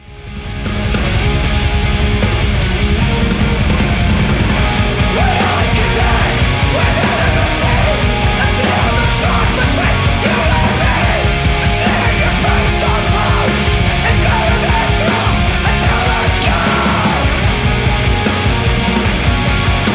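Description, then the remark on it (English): A loud, dense heavy rock song plays throughout, with a strained, desperate screamed vocal from a male singer cutting over thick distorted guitars and pounding drums. “One of my favorite things to hear, the most desperate sounding scream that this little 28-year-old or whatever can muster.”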